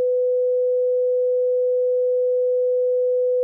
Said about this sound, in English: So here is a sine wave A note. Here's what it sounds like.